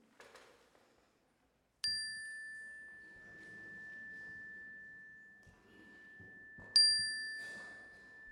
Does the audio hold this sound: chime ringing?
yes